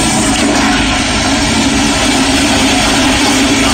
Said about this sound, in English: Am I wrong, though? Is that a crazy toilet flush? It's very aggressive.